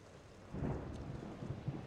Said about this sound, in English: The air at night becomes dead quiet, and from the north comes a cool wind, bringing dark clouds, and from the north the sounds of booming and flashes of light.